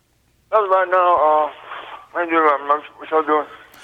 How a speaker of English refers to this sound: By the way, there is an echo for whatever reason. Only when I call them. Only in Franklin, Louisiana, when I call them, there's an echo.